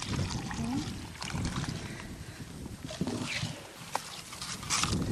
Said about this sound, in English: Okay, I'm just going to put some water in this bag before we catch any fish.